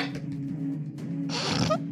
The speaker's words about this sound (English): I totally missed my dice box, and that's a 4 on the die, totaling 9.